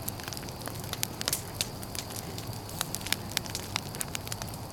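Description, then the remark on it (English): Steady fire crackling with frequent sharp pops and snaps over a low, rumbling roar of flames, continuous for the whole stretch with no talking. “Flames! Yeah, that's a success!”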